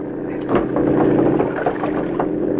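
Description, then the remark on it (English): A boat engine drones steadily, a continuous loud rumble mixed with the rushing wash of water, holding its level throughout with no pauses. “Turn the boat back to the dock.”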